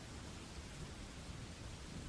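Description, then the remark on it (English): A steady, even hiss of rain falls without pause, soft and constant across the whole moment, with no voices and no distinct crackles or pops standing out. “And everything, aside from the rain and the fires, appears to be still again.”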